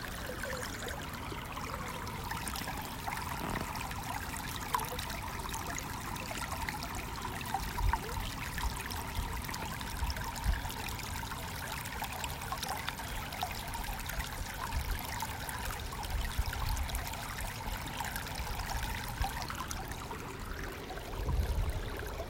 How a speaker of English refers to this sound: You may want to imagine the sound of water flowing all over you, waking you up, cleansing you, quenching your thirst.